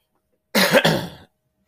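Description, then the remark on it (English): A fairly loud throat clearing from a dry throat breaks into a short, rough cough, two quick harsh bursts lasting under a second, with quiet before and after and no talking. “Sorry about the coughing. Dry throat instantly as soon as I start, of course.”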